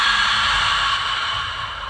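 A long, steady breath pushed out through the mouth during a guided breathing exercise, after breathing in through the nose, an airy hiss lasting about two seconds that fades slightly toward the end, with no talking.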